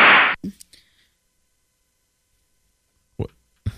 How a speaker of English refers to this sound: Why? Well, don't whip me and we'll be fine.